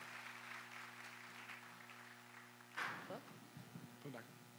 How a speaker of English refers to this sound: Why don't you give them another round of applause?